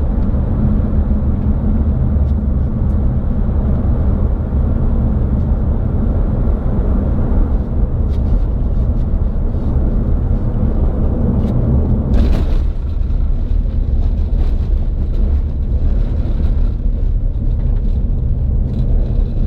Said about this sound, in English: This car's been driving this road. This is like a dirt road. Yeah. So, see how far we can get with the minivan.